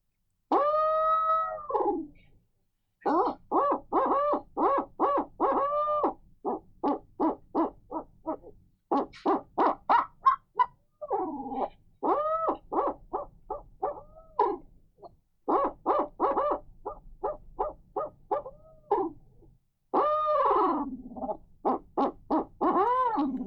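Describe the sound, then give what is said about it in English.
A long series of loud owl hooting calls, likely a person's voice imitating an owl: rapid rhythmic hoots broken by drawn-out, rising-and-falling wails, with brief pauses between bursts and no talk. “Yeah, you want to hear some hooting?”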